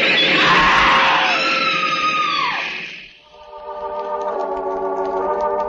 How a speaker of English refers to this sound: Quietly, the man who is death steps back from the edge of the platform as the train grinds to a stop. A woman screams.